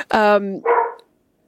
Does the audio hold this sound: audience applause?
no